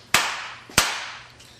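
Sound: hand clap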